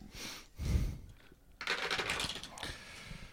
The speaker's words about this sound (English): All right. Now I will roll the dice.